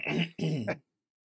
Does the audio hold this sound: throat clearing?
yes